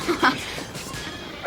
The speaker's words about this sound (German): Was hat Oskar denn? Warum bellt er so?